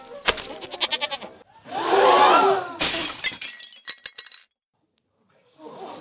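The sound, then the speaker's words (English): A goat lets out a loud, wavering bleat near the middle, surrounded by bursts of clattering and crashing, like objects being knocked over and dropped. “Or maybe if I dumped some yogurt on this goat?”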